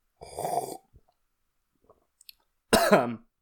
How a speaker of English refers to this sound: I've just cut out, if you're hearing this, I've just cut out about a minute of me coughing because I drank coffee bad.